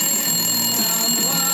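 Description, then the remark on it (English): An electronic phone alert rings steadily, a bright, high-pitched repeating tone with buzzy harmonics sustained throughout, loud and with no one talking over it. “Phone alert! Phone alert!”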